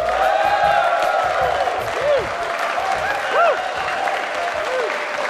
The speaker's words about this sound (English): All right. Thank you so much for that awesome round of applause. That was very aggressive, and I appreciate it.